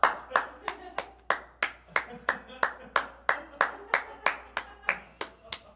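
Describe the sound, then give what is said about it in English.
A group of people clap steadily and rhythmically, about three claps per second, sharp, keeping an even beat for several seconds while a voice murmurs faintly underneath. “As they're clapping, the colleagues look to each other”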